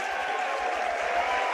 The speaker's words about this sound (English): And the students continuing to stand and cheer.